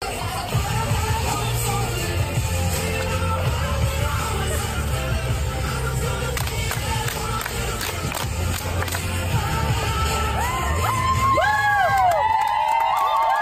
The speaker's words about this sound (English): Okay, put aside that slightly cringeworthy cheer